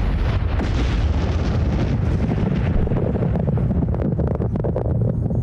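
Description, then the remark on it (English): A loud, continuous roar from an atomic bomb explosion, a deep rumbling blast that churns steadily without letting up, with turbulent wind-like noise layered over it and no voices. “To understand this existential danger, I want to speak to soldiers who've experienced atomic bomb explosions up close.”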